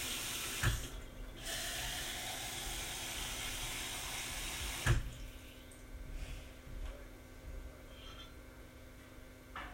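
Tap water runs steadily into a measuring cup, measuring water for waffle batter, a broad rushing stream that changes tone midway as the flow shifts, with a couple of small clunks and no talking.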